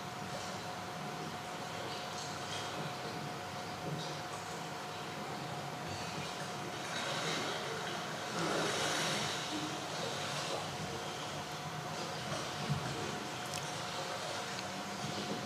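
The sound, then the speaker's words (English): Steady, broad rushing of flowing river water outdoors at the head of the Jordan River by the Sea of Galilee, in Israel, during a baptism, with a few faint bird chirps scattered over it and a constant low hum in the background. “And so I love this video because I love that you can hear the birds and the water, and there's a stillness and a quietness.”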